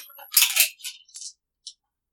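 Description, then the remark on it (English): Dice clatter across a hard tabletop during a roleplaying game: a bright rattling burst, then a few lighter clicks as they bounce and settle. The sound is fairly loud, with no voices. “Here. Have some dice.”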